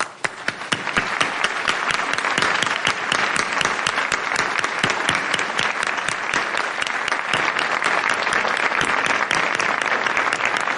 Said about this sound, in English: Esteemed guests, ladies and gentlemen, let's give a warm round of applause for the most generous Supreme Master Ching Hai.